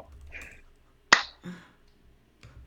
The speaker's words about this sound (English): Why did you clap? Because like now I'm remembering that we're after the potential cut that we wanted to make.